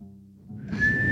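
Someone whistles, holding one clear, fairly loud note that rises slightly in pitch after a quiet start, with low rumbling room noise underneath.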